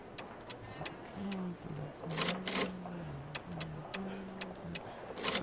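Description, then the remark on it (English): Steady mechanical key clicks tap along at an even pace on a vintage adding machine in a store, totaling a bill of 8,900, with two louder rattling bursts of tape printing midway, while a low voice hums underneath. “Okay, so use an adding machine. That's vintage.”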